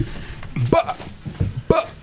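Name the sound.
loud burp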